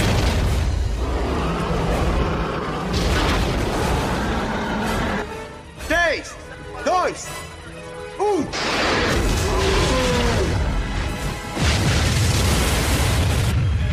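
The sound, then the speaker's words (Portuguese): The impact explosion of torpedo number 3, fired at a target heading back to Manhattan: heavy, roaring underwater blasts with deep rumble, broken by a few bending, groaning metallic tones before the booming surges back loud and sustained. “Impacto em 8 segundos.”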